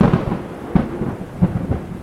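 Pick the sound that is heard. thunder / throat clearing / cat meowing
thunder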